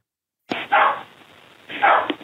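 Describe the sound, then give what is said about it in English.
A spaniel barks twice, with a short pause between the two loud, sharp barks. The sound is thin and muffled, as if heard over a telephone line, and no one speaks. “Well, I think that was a spaniel.”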